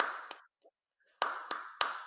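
A few sharp hand claps, one on its own and then a steady run of four, each ringing out with a noticeable echo as if in a reverberant room. No voices are heard.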